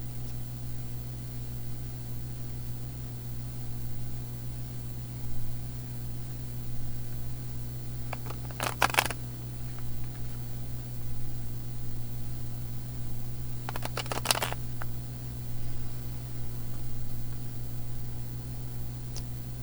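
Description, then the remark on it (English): Two brief, crisp riffles of a deck of tarot cards being shuffled, a few seconds apart, over a steady low electrical hum, with no talking. “Okay, and as I was shuffling, I saw the Queen of Cups healing.”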